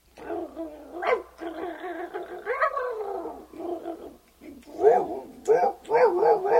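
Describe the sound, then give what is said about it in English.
A person vocally imitates a pack of about five dogs barking, with a rapid jumble of overlapping yaps, growls and raspy woofs, loud, ending in a burst of sharp yips. “Because you would figure that it wouldn't be that bad, but Ralph took off and met up with about 5 other dogs. Well, I can't do 5 dogs. I can. Okay, do it.”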